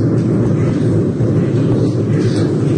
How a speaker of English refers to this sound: There was a lot of lightning strikes around Ardmore, and they kind of moved inland into East Cork and up into Tipperary. Have a listen to this. This is thunder down in Youghal.